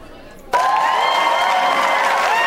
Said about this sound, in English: Let's give you some applause.